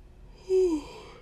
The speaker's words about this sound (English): Goodness, the yawns are coming.